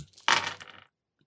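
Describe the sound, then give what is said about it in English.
A quick clatter of dice tumbling onto a table during a game, a sharp burst of rattling clicks that settles within about half a second, then silence with one faint tap; the roll comes up 1 and 6. “That was my snake dice, too.”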